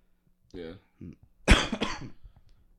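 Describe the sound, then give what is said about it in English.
Two short, voiced throat-clearing grunts are followed by a loud, harsh burst of coughing, with a quieter rasp trailing off at the end. No one speaks. “I hate having a cough”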